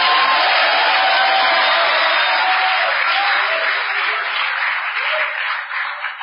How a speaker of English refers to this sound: Why don't you clap your hands and give the Lord a shout?